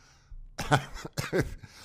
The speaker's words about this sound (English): If you're not laughing there, and sorry for coughing, if you're not laughing now, then I don't know where your sense of humor lies.